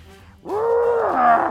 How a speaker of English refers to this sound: But anyhow, while you're looking around, it decides to be a blood-curdling screech.